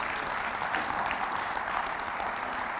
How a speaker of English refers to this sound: Now, I didn't say that for your clapping. I'm glad you agree with me.